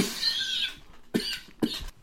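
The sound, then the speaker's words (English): Two short coughs about half a second apart, each a sharp burst that fades quickly, following a moment of faint hissy rustling. No one speaks. “And hang on, I gotta cough again.”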